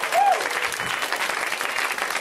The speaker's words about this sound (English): But this is why you should give her another round of applause.